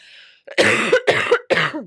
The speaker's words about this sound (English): Excuse me. I just need a good old cough.